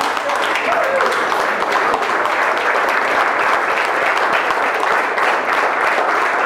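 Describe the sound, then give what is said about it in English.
A loud, sustained round of applause from a crowd asked to stand for an introduced honoree, dense clapping steady throughout with a faint voice or cheer briefly audible in the mix. “Just sometimes, we just need to hear that round of applause.”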